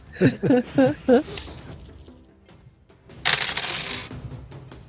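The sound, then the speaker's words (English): A quick, bright clatter of many dice being rolled together during a tabletop role-playing game, rattling for under a second, preceded by a few short vocal sounds. “That was a lot of dice.”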